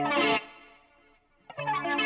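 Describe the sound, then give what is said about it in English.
An electric guitar played through a chorus pedal, stereo delay and reverb strums a bright chord with a shimmering chorus effect. It rings out and fades through delay echoes, then a second chord comes in loud, with no talking. “Well, the only delay I have, I've got a stereo delay going.”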